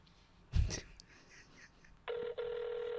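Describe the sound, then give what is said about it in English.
A phone's ringback tone, heard on an outgoing call: after a soft handling bump, a steady electronic ring begins, loud, with a brief break before it continues. “She's not going to answer the phone. Let's find out.”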